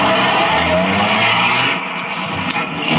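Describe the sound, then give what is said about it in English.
A police car roars with a loud engine and squealing tires as it pulls out of the police garage, the noise staying strong and steady for a few seconds with no voices. “By 5 minutes past 2, half the dragnet crew pulled out of the police garage and scattered over the city to their places.”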